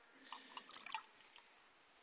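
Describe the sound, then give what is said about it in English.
Water trickles faintly into a glass in a few brief splashy bursts, then quiet, ending with a sharp clink. No one speaks. “So I could almost stop there and have a glass of water.”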